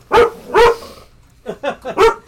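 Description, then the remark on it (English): A dog barks, two loud barks followed after a brief pause by three quicker, slightly softer ones, with no talking over them. “Yeah, my dog's laughing now.”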